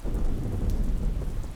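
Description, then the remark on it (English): A deep, steady rumble of thunder rolls beneath the dense hiss of heavy rain, constant and fairly loud throughout, with no voices present. “You can hear the rumbles of the thunder.”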